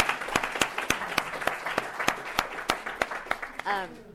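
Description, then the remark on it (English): An audience applauds with a steady, crackling patter of many hands clapping at moderate volume, with a few sharper claps standing out, before a voice starts speaking at the very end. “Applause, welcome.”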